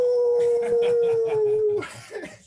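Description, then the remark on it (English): A person imitates a wolf howl: one long, loud, steady wavering note that slowly sinks in pitch for nearly two seconds before cutting off. “I was going to howl.”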